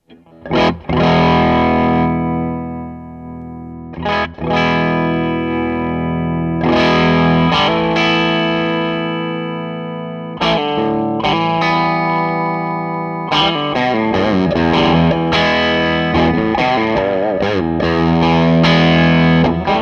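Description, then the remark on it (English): An electric guitar played through a mildly overdriven pedal with the drive set to about half, just starting to kick in, strummed chords ringing out with light crunch and sustain, a few pauses between phrases, fairly loud with no talking. “Let's knock the drive down to about half what it is, just kind of where it's just starting to kick in, and see what the character that is.”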